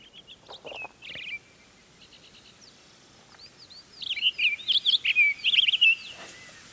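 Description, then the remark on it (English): A Townsend's solitaire sings a rapid, warbling run of bright, high notes, clear, after a few softer chirps at the start; no voices are heard. “How about the that delicate Townsend solitaire?”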